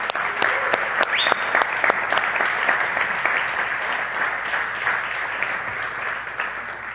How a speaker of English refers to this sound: And we have a humble, humble team of not only the musicians, but the AV team that come and serve sacrificially every Sunday, get here early, early. So can we give them a thank you round of applause?